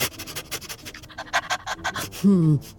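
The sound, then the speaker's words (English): A dog named Sniffy sniffs at a tree with a bird's nest in a rapid, uneven series of short breathy bursts, ending with a brief low, wavering whine. “Sniffy, put your nose to good use. What do you smell?”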